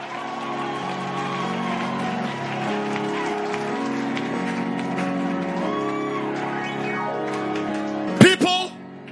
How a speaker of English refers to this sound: Can we clap our hands and shout and jump and scream and move?